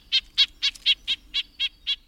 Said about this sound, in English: It's a drawn-out nasal quality that marks the calls of a red-breasted nuthatch. These calls are often transcribed as yank, yank. Red-breasted nuthatches sometimes call rapidly, too, but the nasal edge still rings true.